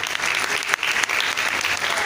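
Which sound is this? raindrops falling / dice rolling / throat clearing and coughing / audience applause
audience applause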